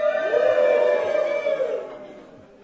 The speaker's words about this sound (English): So, I'd like you to say hello to Cornerstone Calvary Chapel. Voglio che dite hello Cornerstone Calvary Chapel. Just un momento. One minute. Go. Go. Come on, cheer louder.